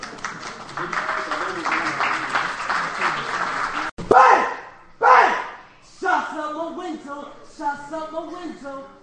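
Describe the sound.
A crowd claps and cheers loudly for about four seconds, with voices mixed into the noise, before it cuts off abruptly and rhythmic vocals over music take over.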